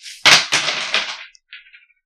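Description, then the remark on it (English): Dice clatter onto a hard floor in a quick series of sharp, bright clicks and rattles, loudest at first, then trailing off into a few small, faint ticks as they settle. “I'm sorry, I keep dropping dice.”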